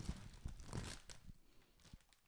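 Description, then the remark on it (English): A bag of shrimp crackers crinkles and rustles as it is opened, with a few sharp crunchy bursts of plastic noise and no talking. “We're opening up the shrimp crackers.”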